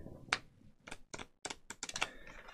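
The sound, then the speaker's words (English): Crisp bursts of papery clicking and riffling come in quick irregular clumps as a deck of playing cards is shuffled by hand, with brief pauses between the flurries and no talking. “Oh, let me shuffle these. Use my shuffling skills here.”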